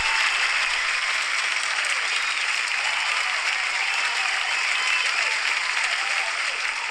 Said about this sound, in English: That's a lot of applause.